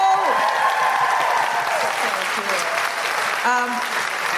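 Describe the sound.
A Newcastle audience applauds loudly and steadily for the closing act, a dense wash of clapping for several seconds, with a few voices calling out and cheering over it.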